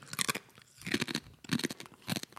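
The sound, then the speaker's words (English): Loud crunching of a crispy Quaker snack: several sharp, brittle bursts in an uneven chewing rhythm, each a dry crackling crunch, with no talking. “Great crunch.”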